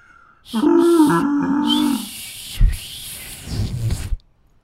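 A loud, steady horn blast with a rich buzzing tone holds for about a second and a half, then gives way to a brief high whistle-like note, also made by the same horn as a double note, and a breathy, rumbling tail that cuts off.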